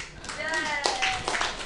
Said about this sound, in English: Clap if you know what that is.